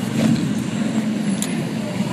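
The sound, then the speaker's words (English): A big chopper motorcycle, its front wheel set about 3 feet forward, passes on the road; its engine rumbles steadily, a loud, low throaty drone with a gritty roar on top that holds at an even level for a couple of seconds, with no one talking. “I don't know if you could hear it, but it's a guy with a big-ass chopper.”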